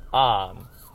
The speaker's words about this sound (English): Sorry, there's an ambulance. There was an awful accident.